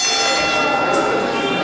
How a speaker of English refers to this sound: Bell has sounded and we are off with our second three-way dance of the night.